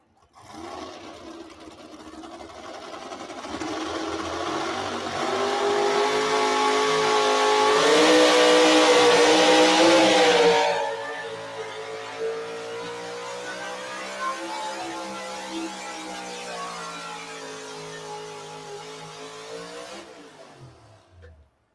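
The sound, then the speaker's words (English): Lee England's Black Thunder Ford pulling vehicle roars and revs hard during a pull, climbing to a loud, strained peak before dropping back to a steady rumbling drone that wavers in pitch and then cuts off. “So give Lee England a round of applause with the Black Thunder Ford.”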